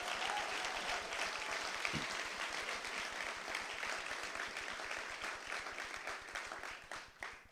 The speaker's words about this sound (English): He's actually the youngest recipient ever of that award, so let's get a round of applause for that.